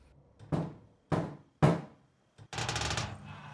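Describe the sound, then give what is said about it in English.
Three loud, sharp knocks on a door by a police officer, spaced unevenly, each ringing out briefly, followed after a short pause by a longer rattling, scraping noise. No one speaks. “He had just completed the afternoon checklist after turning on the light a little earlier due to cloud cover and was settling down to a can of soup cooked over his camping stove when there was a knock on the door.”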